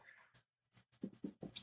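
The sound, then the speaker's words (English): Typing an author's name on a computer keyboard: a short, irregular run of about seven crisp key clicks, quiet, with no voices. “This is me typing his name in.”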